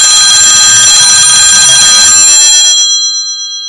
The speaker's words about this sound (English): Additionally, the phone rang for the third time that morning.